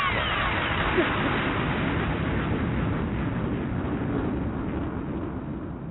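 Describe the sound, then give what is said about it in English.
A sustained, rumbling explosion effect roars at a steady, fairly loud level for several seconds, dense and noisy with a low boom underneath and no speech. “Come on, let the bomb go off.”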